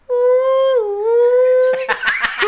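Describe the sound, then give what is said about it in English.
A voice imitates a whale call: a long, loud, tonal moan that sags in pitch partway through, then holds steady before breaking into a few choppy, breathy bursts like laughter. “Oh, that was a really good whale sound.”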